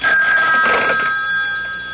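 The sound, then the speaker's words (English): A telephone rings with a steady, continuous electronic trill for about two seconds, fairly loud, with no voices present, as a call is made from a public phone. “Then he crossed to the public phone to make a call.”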